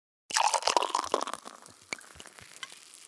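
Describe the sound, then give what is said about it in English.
Crisp crunching as someone chews crunchy potatoes, dense and loud at first, then thinning out to a few scattered crackles. No one speaks. “That's because you've tried my potatoes.”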